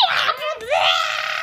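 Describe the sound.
A shrill, piercing vocal screech mimicking a pterodactyl, rising and wavering with a brief dip in the middle before climbing again, loud for about a second and a half.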